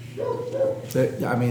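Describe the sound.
A dog barks loudly outside, several rough barks in quick succession, with a person talking underneath.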